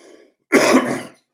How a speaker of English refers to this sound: I apologize for the coughing, sniffling. I'm not sure if I'm still getting over this cold or what.